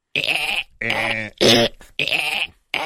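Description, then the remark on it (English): A man imitates the lovemaking noises of a sick dolphin with five loud, strained, bleating squeals in short bursts separated by brief pauses. The tone is high and nasal, and no words are spoken. “But you could even hear it in his dolphin lovemaking noises that he was not feeling well.”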